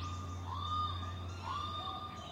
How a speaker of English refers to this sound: The daytime bird songs were barely audible over the ambient city noise. To me, it seemed incredibly melancholic how the songs of the absent birds called out to a landscape no longer able to answer them.